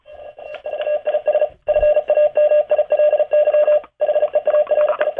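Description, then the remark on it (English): Morse code tones: a steady mid-pitched beep keyed rapidly into short and long pulses, loud and clear, with a couple of brief gaps between groups and no voices; a ham radio operator sends a quick Morse code message spelling Davis Family Hearing. “That's Morse code for Davis Family Hearing.”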